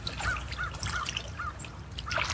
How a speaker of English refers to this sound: My back is resting and my head is resting up against a beautiful ancient old growth cedar here. Nowhere near as big as the cedars on the west coast, but big for northwestern Ontario. Eagle calling.